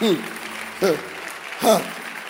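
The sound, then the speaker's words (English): Steady clapping from an audience during a sermon as the preacher urges them to clap better, with three short loud vocal bursts, shouts or exclamations, rising above it at roughly even intervals. “I'm waiting for you to clap better.”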